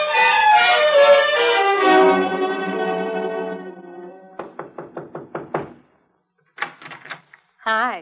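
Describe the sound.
A ringing, descending chime fades out, then a quick series of about seven sharp knocks by a visitor raps on a door, followed by brief bursts of voice.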